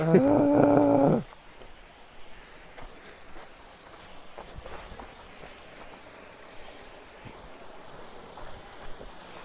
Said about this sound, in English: We're fording the river.